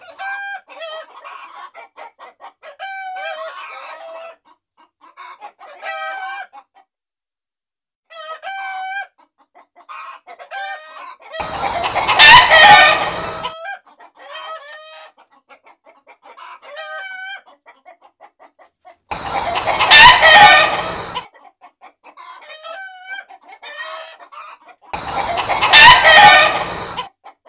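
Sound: chickens clucking and crowing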